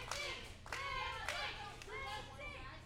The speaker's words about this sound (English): Now Lindsay getting some cheers from the crowd here. And now they're cheering for.